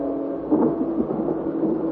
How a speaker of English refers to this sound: About 12 o'clock, we heard a sound like thunder. I note down this fact without suggesting any reason for it.